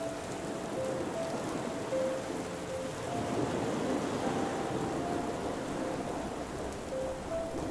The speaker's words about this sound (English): now inside, sheltered from the storm outside.